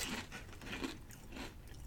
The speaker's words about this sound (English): It's a kettle chip, so a good crunch. Yeah, nice skin edge chip.